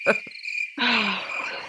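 Crickets chirp in a steady, shrill trill throughout, with a brief gap early on, joined by a few low croaking calls like frogs in the background. No one speaks.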